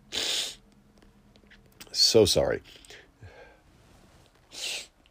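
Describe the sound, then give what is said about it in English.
Several sneezes in quick succession, the middle one loudest and most voiced, with a brief spoken apology in between and a softer breathy burst at the end. “I should probably blow my nose, but that would take time away from the podcast.”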